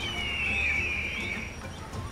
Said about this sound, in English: That huge rock wall over there seems inhabited by real big birds, and they're wearing business suits.